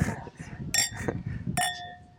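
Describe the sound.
Wine glasses of Riesling Liebling 2018 clink together twice in a toast, each bright tap leaving a clear ringing tone that lingers, while people talk softly underneath.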